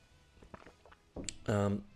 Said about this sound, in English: One second, I'm drinking some tea.